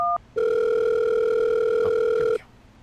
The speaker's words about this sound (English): All right, I've got out my interdimensional phone. Let's see. I'm going to dial 911. Call the police.